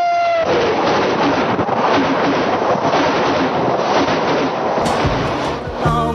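A train locomotive roars past, a loud, steady rumbling rush that fills several seconds, with a brief tonal note at the start and a clattering shift near the end.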